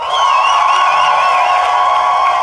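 An audience applauds and cheers loudly and steadily to vote for the side it thinks made the best case in a debate, with wavering high whoops and shouts riding over a dense wash of clapping that holds for the whole stretch.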